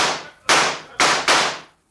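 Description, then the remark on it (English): Four loud gunshots fired at a stable crack out in an uneven volley, each a sharp burst with a quick ringing decay, the last two fired close together. No voices are heard. “Draw your guns, boys. We'll show them mavericks what's what in mighty short order. All right. Drill that stable.”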